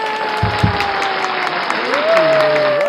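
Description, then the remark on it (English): An audience applauds steadily to welcome a therapist, a dense wash of clapping that fills the whole stretch, with a couple of low thumps early on and a rising tonal sound, like music, joining toward the end. “How often do you get applause for being a therapist?”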